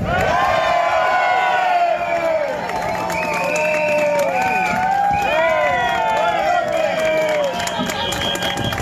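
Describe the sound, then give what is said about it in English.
A large crowd cheers and whoops loudly, with many overlapping shouting voices and steady applause filling the space continuously for several seconds. “Would you please give a massive roaring cheer for the folk faceuth”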